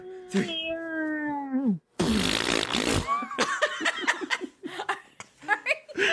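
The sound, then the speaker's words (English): A long, droning burp-or-fart-like sound slides downward in pitch, followed by a harsh noisy burst, then voices chatter and laugh. “Are you burping? Or are you? My bowel discomfort.”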